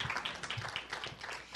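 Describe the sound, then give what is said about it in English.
An audience applauds in a steady, dense wash of clapping that holds at an even, fairly soft level for under two seconds, with no voices over it. “Let's have a round of applause to welcome Scott Hadley tonight.”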